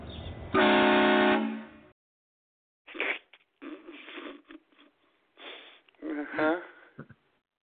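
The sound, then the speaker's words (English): One loud, steady car horn honk lasting about a second, followed after a short pause by voices talking. “This is the horn I would like to put on it.”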